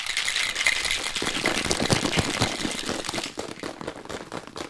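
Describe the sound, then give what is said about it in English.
A red cocktail shaker with ice is shaken hard and steadily for several seconds while mixing a drink, producing a loud, bright, continuous rattle of rapid clattering hits that eases slightly toward the end. No voices. “You want to give that a quick shake. Oh, wait. The ice.”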